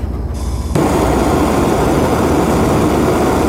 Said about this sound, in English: But I don't have a grill on my boat, so I'm going to have to use a blowtorch.